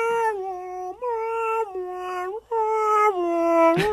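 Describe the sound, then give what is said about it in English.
A voice mimics an ambulance siren coming down the street, performed as a requested sound effect. It holds a loud, steady wailing tone that shifts between pitches in roughly four segments over a few seconds, with no other sounds or speech. “Ambulance coming down the street.”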